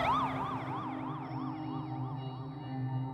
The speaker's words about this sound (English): And pretty soon you would just hear fire trucks going from everywhere.